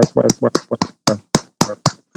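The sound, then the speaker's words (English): A clapping sound effect: a steady run of sharp hand claps, about four per second, snaps over voices that chant or talk along with them, loud. “Yeah, we got to hit him with Oya Clap for yourself. So Oya Clap for yourself.”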